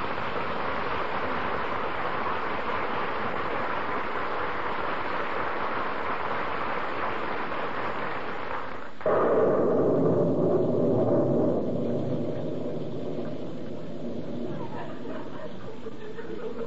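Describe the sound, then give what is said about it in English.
Heavy rain pours in the street in Wistful Vista in a steady, dense hiss. Partway through, the sound abruptly shifts to a fuller, lower-pitched wash that continues without a break. No voices are heard. “But brother and sister, in Wistful Vista, the rain is more wet than jolly.”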